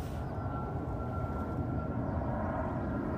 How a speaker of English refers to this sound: Can I get a freaking plane? Please? Overhead?